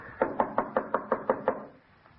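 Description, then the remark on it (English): Eight quick, evenly spaced knocks rap on a wooden house door whose bell is out of order, firm, then the sound stops and only faint room tone lingers. No one speaks. “Oh, it was out of order when I was here. I had to knock.”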